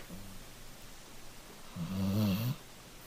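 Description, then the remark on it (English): A dog snoring softly, one rumbling inhaled snore near the end following a faint earlier breath, with quiet room noise in between and no one talking. “This is the dog. This is Teddy right here. Listen how quiet he is.”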